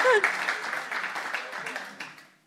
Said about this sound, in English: You guys should be clapping louder for that one.